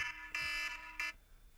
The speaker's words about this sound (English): Alarm.